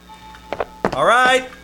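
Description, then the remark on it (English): At a home, two soft thumps, then a sharp knock followed by a loud, sustained buzzing doorbell ring with a slight upward bend in pitch, cutting off abruptly after about half a second. “I was at home, smoking my pipe, minding my own business, when the doorbell began to come out by the roots.”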